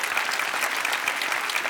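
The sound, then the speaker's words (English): An audience claps steadily, a dense, even patter of many hands at a fairly loud, constant level, with no pauses or voices standing out. “We clapped.”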